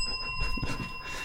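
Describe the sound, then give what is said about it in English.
A small bell rings steadily for the whole moment, a sustained bright metallic tone over a low rumbling background, with no voices present. “Is that bell big enough to toll?”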